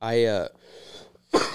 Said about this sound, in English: I keep coughing.